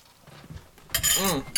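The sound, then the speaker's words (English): A brief clink as objects knock together in a toast before tasting Tabasco pepper sauce, with a scraping rustle and a short voiced exclamation, then a final quick tap. “Let's cheers.”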